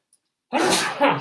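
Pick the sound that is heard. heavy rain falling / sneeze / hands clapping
sneeze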